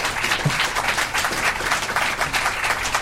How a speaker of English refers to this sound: We have now come to the end of our program. Let's have a warm round of applause for our guests.